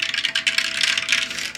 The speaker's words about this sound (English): I was rolling the percentile dice and got an 85.